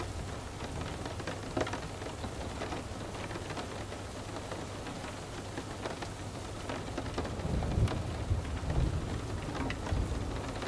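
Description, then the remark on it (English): Steady rain falls continuously with scattered droplet taps, and a low rumble swells near the end, like thunder, with no voices present. “Your body becomes more relaxed with each raindrop that you hear.”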